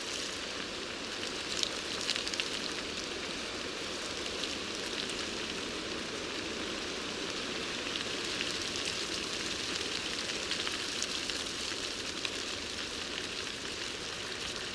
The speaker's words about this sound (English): Listen to the ticking of the leaves in the wind.